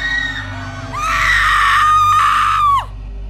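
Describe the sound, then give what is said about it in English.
A long, piercing scream rises sharply from behind an old, rusted, closed door in a children's TV programme's closing scene, holds at a high strained pitch for nearly two seconds, then breaks off, with a low steady rumble underneath throughout. “As it got closer to the door, strange and sometimes even agonizing screams would become more audible.”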